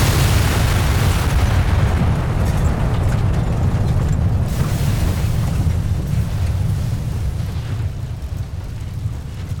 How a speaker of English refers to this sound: My sensors are indicating rapid fluctuation in the radiological spectrum. There's no reference point in my... Shockwave imminent. Brace for impact.